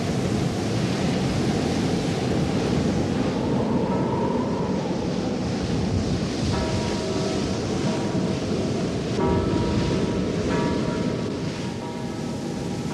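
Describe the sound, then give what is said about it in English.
Heavy sea waves and flood water roar in a loud, unbroken rush of churning noise, with faint whistling tones drifting through the second half and no voices. “Through the heavy seas drift the roofs of the houses,”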